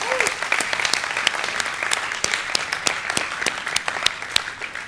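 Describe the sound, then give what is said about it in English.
A church audience claps steadily for about five seconds during a morning service, a dense patter of many hands with sharp individual claps standing out, no voices rising above it. “So can we give them a hand of applause this morning?”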